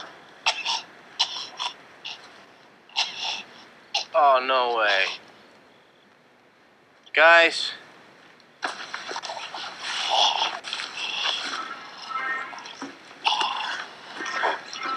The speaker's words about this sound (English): here he isn't dead, but boy, for that 8 o'clock time slot, they go for it all with the sound design of him kind of gurgling and choking and whatnot. And lucky you, we can listen.